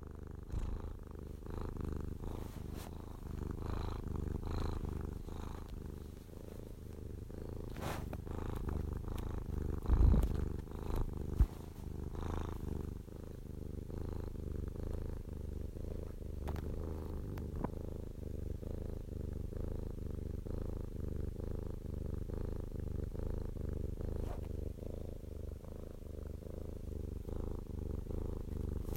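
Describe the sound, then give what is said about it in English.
A domestic cat purrs steadily, a continuous low rumbling with a soft rhythmic pulse, occasionally broken by a faint click or shuffle, with no voices present. “Here is a recording of my cat purring.”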